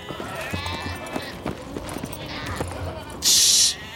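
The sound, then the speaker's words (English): Irregular goat hooves clopping on a crumbling stone platform jutting out over a pit, several steps mixed with four bleating goats tied to a rope, then a short, loud, bright burst of noise near the end. “A pale young man named Zagreus stood atop it, holding a rope tied to four stubborn goats.”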